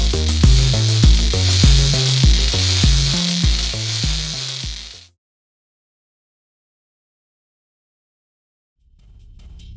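Loud, steady sizzling of a person's skin beginning to cook as the heat is turned up, over a pulsing low rumble, cuts off abruptly halfway through; after a silence a faint low hum creeps back in.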